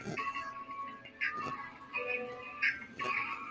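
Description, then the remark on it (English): Soft, high-pitched whistling snores from a small dog, a female puppy named Koa, nearly three months old, repeating in a steady breathing rhythm about every second and a half, with no voices. “There she goes. She's snoring, y'all.”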